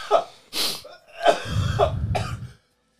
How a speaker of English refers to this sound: Just heavy breathing on the mic. Yeah, sorry, dude.